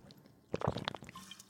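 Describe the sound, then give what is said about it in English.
A drink being poured from the centenary quake, a short, quiet burst of liquid with gurgling and splashing for about half a second before it trails off into a few faint drips. “Let me pour this.”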